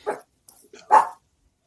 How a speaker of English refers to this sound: Okay, so just as my dog is starting to bark, it's my turn to talk.